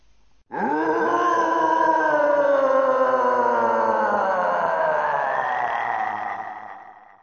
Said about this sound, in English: This is the Guardian Roar 1, okay? This is it in Japanese. This is the first time the Guardian Roar, which I can only assume is when whatever Guardian this is materialises and is first seen, okay? So, Guardian Roar 1, this is it in Japanese.